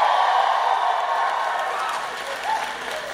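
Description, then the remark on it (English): A loud, sustained roar of audience cheering and applause, a dense wash of clapping and whoops that holds steady for the whole stretch with a few voices rising above it. “Y'all are fucking loud and I'm loving this it.”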